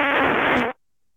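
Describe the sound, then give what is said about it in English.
A single loud, sustained fart lasting under a second, buzzy and reedy with a steady pitch, then cutting off abruptly into silence, played back from a phone recording made by holding the phone next to a butt. “I remember holding my phone next to my butt and farting in it.”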